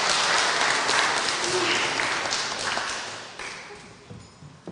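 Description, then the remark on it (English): A crowd breaks into applause for a woman's work, a dense wash of many hands clapping that stays loud at first, then gradually thins and fades, leaving scattered individual claps near the end. “I think she deserves another round of applause for her work.”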